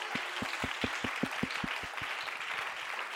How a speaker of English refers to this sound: Come on, clap your hands for the Lord.